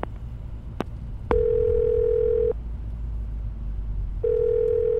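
Two long, steady electronic ringback tones of a voice-command call to the Baltimore Special Investigation Section, each lasting over a second with a pause between, sound over a low rumbling engine-like hum, with a couple of faint clicks at the start.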